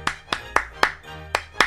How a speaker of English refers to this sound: the patented audio sensor will respond to different clap rhythms, turning on and off the corresponding appliance.